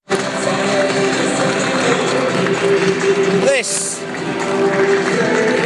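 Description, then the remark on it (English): Fans in a stadium in Blackburn applaud the players as they walk out, in very cold weather: steady, dense applause and a rumble of many voices, sustained loudly throughout with a brief whooshing sweep partway through. “as we're walking out the stadium, Beast fans giving applause to the players.”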